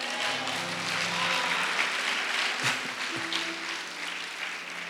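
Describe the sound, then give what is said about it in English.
A crowd claps for Jesus steadily and densely throughout, a broad wash of many hands with faint tonal hum and murmuring voices underneath, sustained at an even, fairly loud level. “Hey, clap for Jesus.”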